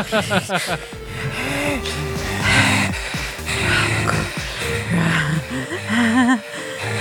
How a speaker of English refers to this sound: it's all just going to be us heavy breathing as …